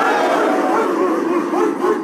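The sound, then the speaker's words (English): The James Madison University football team, on campus in Virginia during a live broadcast, loudly barking and yelling together like dogs, a dense, continuous chorus of voices imitating dog barks that stays loud throughout. “Oh, I like the end there, the barking at the end. Let's have that one more time.”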